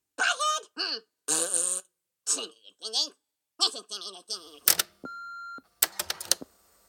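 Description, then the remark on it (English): An answering machine beep sounds once, a steady electronic tone lasting about half a second, after a stretch of squeaky, chattering vocal noises and followed by sharp clicks and clatter. “Please leave a message after the beep.”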